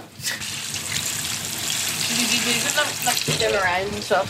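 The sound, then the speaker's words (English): Banana rolls bubble and sizzle steadily in hot oil, a continuous crackling hiss with many bubbles from the bananas' high water content, with a voice briefly audible over it near the end. “So you see the way, you see the way there's more bubbles, because there's more, we didn't, there's so much water in the bananas.”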